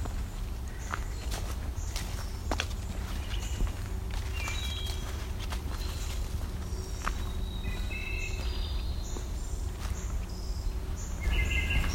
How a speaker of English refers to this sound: Another wood thrush now.